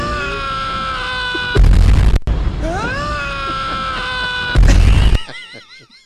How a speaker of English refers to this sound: you want to load up that scream. What? Do we have a male scream times two?